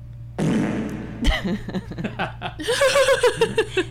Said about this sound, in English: I hate the fart noise, but you put it in church. Yeah, with reverb, it says.